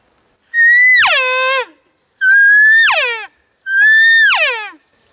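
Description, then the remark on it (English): Three loud cow elk calls made on a caller to sound interested and excited to an answering bull. Each is a nasal mew about a second long that rises then slides downward, separated by brief pauses, with no talking. “Sometimes when I get a bull that answers, I'm going to give him a little bit more emotion in my call and sound like I'm pretty interested and maybe a little bit excited.”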